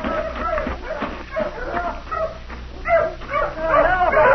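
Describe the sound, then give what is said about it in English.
Several hounds bark and yip excitedly in overlapping bursts, fairly loud, growing more frantic toward the end, with some whimpering mixed into the commotion, after finding someone in a thicket at the bottom of a valley. “Get your dogs away! Pull your dogs off, mister!”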